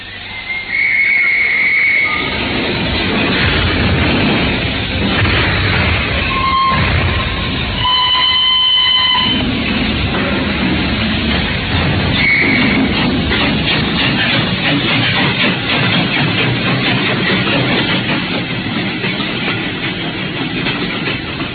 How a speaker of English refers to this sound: The train sped out of Paddington.